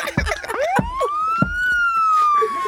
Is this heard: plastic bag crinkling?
no